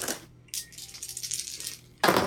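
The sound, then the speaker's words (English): Dice clatter and tumble across a hard tabletop in a quick, rattling burst lasting a second or two, fairly loud, followed by another sharp clack. No voices are heard. “So this would be a threefer on the dice.”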